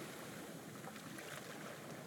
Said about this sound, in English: As you walk back along the footpath you came in on, the sounds of the ocean gently fade away until all you can hear are your eager footsteps taking you to where you will get a good night's sleep.